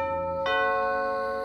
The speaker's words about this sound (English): It wasn't hard to dig up an address for the DA, who lived in a small castle over in Lake Forest. I waited until night set in, after all the police and newspapers had left. Then I rang the doorbell.